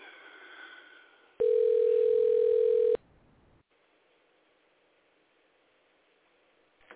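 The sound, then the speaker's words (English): A telephone line tone sounds loudly and steadily for about a second and a half while calling an assembly member's office, preceded and followed by faint line hiss, with no voices. “Let's call this representative here and put him on the hot seat here.”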